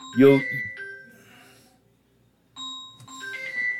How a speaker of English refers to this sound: My phone is making an... Oh, hang on, everybody.